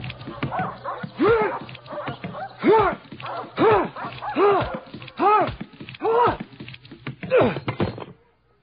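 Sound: dogs barking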